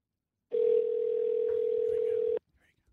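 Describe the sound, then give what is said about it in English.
A steady, unbroken telephone dial tone hums loudly for about two seconds as a number is called on speakerphone, then cuts off abruptly, leaving only faint background noise. “Let me call this number.”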